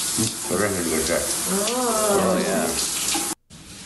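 Steady hiss of shower water running for a few seconds, with a voice talking over it, then cutting off abruptly before a brief return of the spray.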